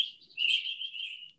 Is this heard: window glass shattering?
no